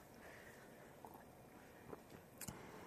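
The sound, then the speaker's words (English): Someone sips and gulps iced tea, with a few soft wet swallowing sounds spread out over a hushed background and a brief clink near the end. “I better take a sip of iced tea before I delve into this one.”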